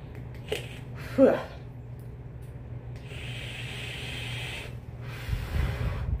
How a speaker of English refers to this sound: Guess what? I'm pissing.